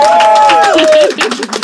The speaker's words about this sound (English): So big round of applause for them. A huge round of applause for our amazing panel.